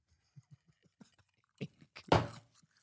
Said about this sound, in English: I'm chewing ice here.